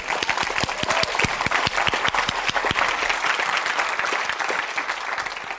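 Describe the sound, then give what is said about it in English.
A church audience breaks into sustained applause at a preacher's call after a line about prayer in the home and in school, many hands clapping in a dense, steady wash with sharp individual claps standing out, loud and continuous for several seconds, with no one speaking over it. “And when there is prayer in the home, after I say this, I want you to clap.”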